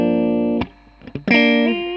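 An electric guitar with a P90 pickup, played through an amp with separate clean and dirty channels, rings out a sustained chord, stops, gives a couple of short muted plucks, then strikes another full, slightly gritty chord that rings on. No talking.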